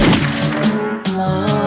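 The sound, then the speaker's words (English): Several sharp gunshot sound effects crack out in quick succession, each a loud burst with a short fading tail, layered over a steady, tonal music beat. “Gunshot.”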